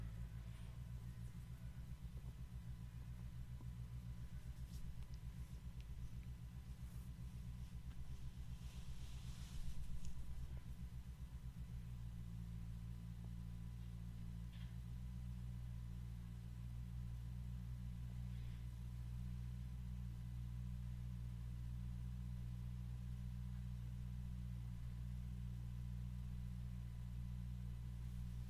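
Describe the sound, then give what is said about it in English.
A neighbor's motorcycle engine rumbles steadily with a deep, droning idle tone as it drives away, shifting pitch briefly partway through as it revs, then continuing at a steady level. No one speaks. “Oh, there goes our neighbor with his motorcycle.”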